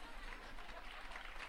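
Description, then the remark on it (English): A canned burst of crowd applause, a sound effect played from a studio button pressed by mistake, plays steadily, a dense wash of clapping with no pauses, holding an even loudness throughout the short stretch. “Not sure why the crowd's laughing at that, applauding that. did you hit the wrong button?”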